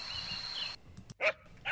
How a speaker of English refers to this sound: At night, there were the sounds of dogs yipping, donkeys braying, great herons cawing their creaky calls.